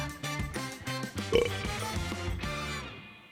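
A long, loud, gravelly burp rumbles for a few seconds, its pitch wobbling before it trails off, with no talking around it.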